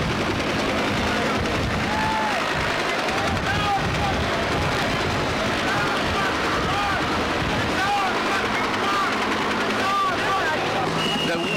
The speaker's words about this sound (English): That's the sound of the rotors, the propellers of the helicopter, and they're kicking up an incredible storm of dust. The trees and dust and dirt are blowing like a great dust storm across the avenue.